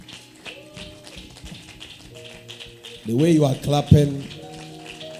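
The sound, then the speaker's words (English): A church audience gives a clap offering to receive the Bishop, clapping in a dense, rain-like patter over sustained keyboard tones, and partway through a loud voice speaks over the steady clapping. “you are clapping like the weather.”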